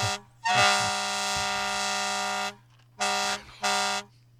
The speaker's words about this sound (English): No, we're just making room for the fire trucks that are coming through.